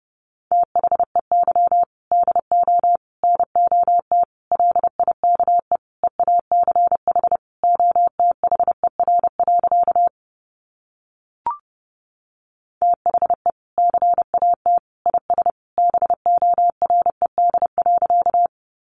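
Morse code sent at 30 words per minute: a steady, mid-pitched tone keyed into quick dots and dashes, in two long runs split by a short pause with a single faint click.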